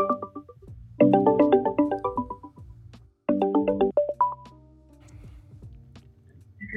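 A phone rings twice in loud, warbling electronic bursts while a caller is being reconnected to the line, the second ring shorter and cut off, with a low hum underneath and no one talking.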